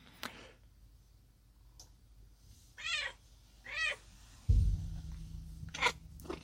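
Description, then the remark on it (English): A cat named Fluffy meows twice, short, followed by a soft thump as it jumps up onto a table, then a few light clicks and scuffs. No one speaks. “So I don't know if you can hear my cat Fluffy just jumped up on the table here.”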